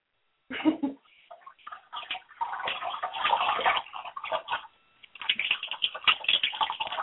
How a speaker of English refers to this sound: Actually, the gurgling sounds of the water are very interesting over the phone. Hmm? I said the gurgling sounds of the water are kind of interesting over the phone.